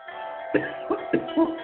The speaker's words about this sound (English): Oh, boy, cheap perfume, I'm coughing on it. Oh, cheap perfume. We'll do that to you. You'll cough, that'll do it to you, with cheap perfume.